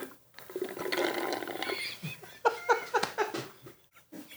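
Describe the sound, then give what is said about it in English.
Someone loudly slurps a drink into a microphone: a long, airy, hissing suck, then a few short wet gulping bursts in quick succession. No one speaks. “In what world did it seem like a good idea to slurp a beverage into a microphone?”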